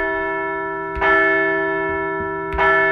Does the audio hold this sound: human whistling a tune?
no